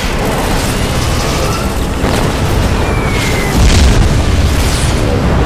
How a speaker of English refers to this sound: On his call, the U.S. warbirds plunge again, back down into that typhoon of steel, lighting up the great behemoth with simultaneous torpedo strikes and bomb hits.